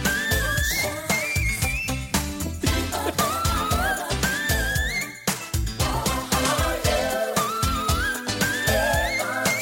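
A female singer's whistle-register passage: very high, piercing notes in quick, agile runs, soaring loudly over a full, driving band with steady drums.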